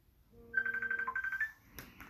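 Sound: phone ringtone ringing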